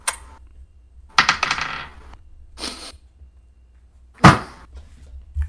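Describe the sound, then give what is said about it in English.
Dice clatter across a tabletop in a few separate bursts of sharp clicks and rattles, fairly loud, with quiet pauses between and no one speaking. “I'm gonna roll a different dice.”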